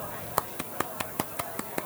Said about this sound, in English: That's the first time I've actually stopped the show to give you a clap.